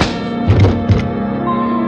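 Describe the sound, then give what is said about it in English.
A punch lands with a quick pair of dull, heavy thuds, then one more solid thump as a man is knocked down, all over a steady low background hum. “Why is it that people who telegraph their punches are always the first to start swinging?”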